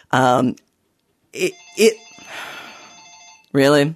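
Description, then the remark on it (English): A telephone rings once with a sustained, slightly rattling bell tone, framed by short vocal bursts before and after it. “All right, I'll answer the phone.”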